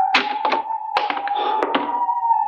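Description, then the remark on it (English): A door in a municipal building is handled with a series of dull, heavy thunks as it swings and bumps shut, over a steady faint electrical hum; the door works smoothly, as if recently oiled. No one speaks. “This door is in good working order. Almost as if it had been oiled recently.”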